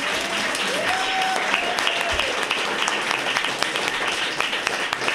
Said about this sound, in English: Maybe just a quick applause.